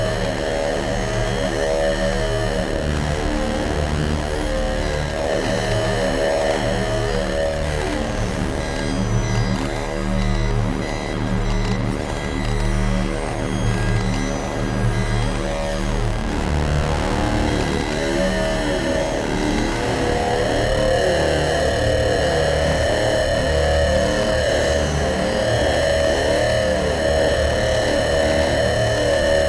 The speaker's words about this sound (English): Now we've got this cool glitchy texture on top.